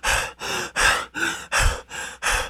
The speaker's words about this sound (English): You used to be long-winded off 3 miles. Heavy breathing after 3 miles.